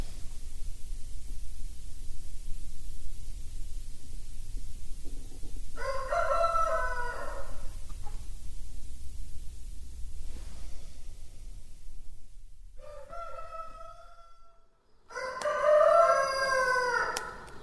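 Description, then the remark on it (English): A rooster crows loudly several times at 5:15 in the morning on a farmyard with chickens, long harmonic calls rising and falling, over a steady low rumble of farmyard background noise; no one speaks. “I've got a couple of lovely fresh eggs here from these chickens behind”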